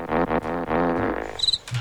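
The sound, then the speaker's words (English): A short burst of thin, high-pitched cricket chirps comes in near the end, following a louder, buzzy tonal stretch. The chirping is brief and fairly faint. “I hit the crickets.”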